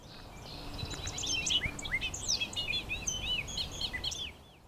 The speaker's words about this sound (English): No bird sounds quite like the bobolink. In fact, not much of anything sounds like the bobolink. My best go-to comparison is the gibberish one might hear when playing an old damaged compact disc.